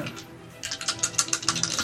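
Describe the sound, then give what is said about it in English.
Dice clatter across a hard tabletop in a quick, uneven burst of sharp clicks and rattles that slows as they settle, as a player rolls critical-hit dice in a tabletop game. The sound is moderately loud, with no talking. “Roll your criticals.”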